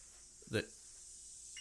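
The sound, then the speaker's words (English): A mobile phone gives one short, bright electronic beep with a ringing harmonic tone, followed by a fainter high blip near the end, all over a steady background hiss. “It's my phone, sorry.”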